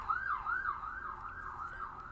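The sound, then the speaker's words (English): A fire engine from a fire station down the street passes by, its siren wailing in a fast, rising-and-falling yelp, cycling about twice per second at a steady, fairly strong level, with no voices over it. “So for those of you listening, if you listen to Magnum Broadcast, you also know that we live down the street from a fire station, so...”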